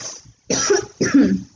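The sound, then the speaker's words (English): Two short, rough coughs in quick succession after smoking a dab, moderately loud, after a brief softer breathy sound at the start, with no talking. “You didn't cough bad.”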